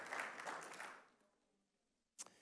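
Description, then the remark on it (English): A church audience claps together for those who have served the country, a dense patter of many hands that fades away within about a second, leaving near silence broken by one sharp click. “Clap your hands one more time for all of those who have served our country.”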